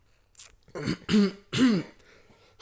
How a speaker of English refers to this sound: I'm so sorry. My cough break. That's a cough too.